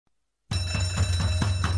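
After a brief silence, a fire alarm bursts into loud, continuous ringing, a steady metallic clangour with a fast, pulsing rhythm and a low droning hum underneath.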